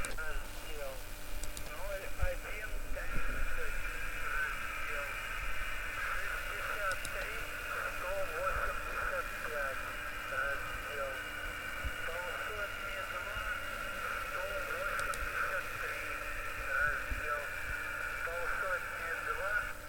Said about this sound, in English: And you'll hear them trying to talk with this, like, this white noise coming over it. So take a listen to this. This now is as the invasion is ongoing. You could hear that whooshing sound, that's that jamming.